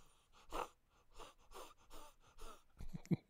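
A person imitates a weak, voiceless cough with a series of five or six quiet, breathy huffs of air and no voiced tone, ending in a couple of sharper, clipped puffs.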